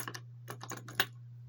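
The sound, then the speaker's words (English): A quiet run of small metallic clicks and clinks of keys unlocking and opening a cell door, ending in one sharper clack, over a steady low hum with no voices. “Carter's already got the keys and is letting himself in.”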